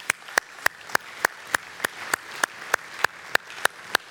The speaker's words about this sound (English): Just give them a little round of applause.